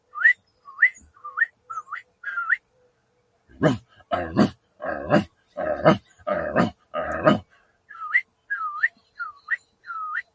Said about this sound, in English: I'll just whistle every time that dog barks.